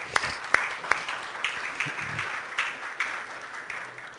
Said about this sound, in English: Thank you all very much. Y'all give these guys a huge round of applause.